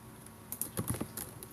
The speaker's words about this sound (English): So much typing.